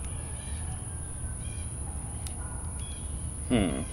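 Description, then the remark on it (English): Outdoor ambience while sitting out by a fire pit, with a steady high insect drone throughout, faint scattered bird chirps, and one louder, harsh crow-like caw near the end over low background rumble. “Listen to all the nature. You hear that? Listen to all the birds and the bugs.”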